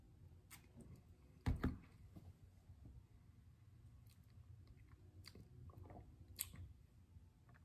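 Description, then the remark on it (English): Quiet mouth sounds of someone sipping añejo tequila neat, with a sharper slurp early on, then soft wet smacks and swallows spread over several seconds with no talking. “Let me take a couple more sips.”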